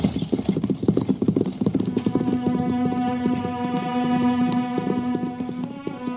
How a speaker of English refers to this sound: What's the idea of making them horses run away? Don't be so dumb, Buck. Them nags won't stop till that buckboard is over the border.